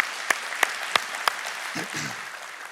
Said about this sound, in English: Y'all give them one more round of applause.